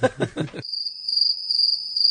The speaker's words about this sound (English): Crickets.